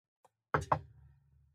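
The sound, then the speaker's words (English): Two quick, solid knocks on a wooden surface, fairly loud, preceded by a faint light tap, with a short low resonance ringing out afterward. “Knock on wood, dude.”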